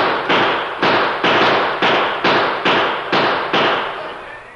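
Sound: gunshots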